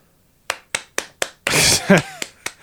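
A person claps hands four times in a quick, even rhythm, then a louder, rushing burst of noise interrupts before two more crisp claps close it out, all fairly loud.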